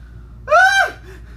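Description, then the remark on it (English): A single short, high-pitched scream bursts out, rising and falling in pitch over about half a second before cutting off into a quiet background, with no talking. “Don't scream like that.”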